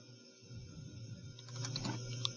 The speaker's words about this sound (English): all right, let me back up because I'm typing in the wrong number.